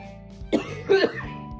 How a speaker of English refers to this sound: Excuse me, there I go with my cough again.